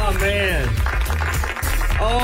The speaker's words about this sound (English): Ladies and gentlemen, put your hands together. Take them off the steering wheel. No, don't do that. Let Jesus take the wheel while you applaud right now for Mr. Bob Fonseca.